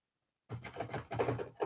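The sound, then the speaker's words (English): After a moment of silence, a voice imitates keyboard typing with a fast, steady stream of clicky, sputtering mouth sounds lasting just over a second. “Did you hear that? That's my fake typing.”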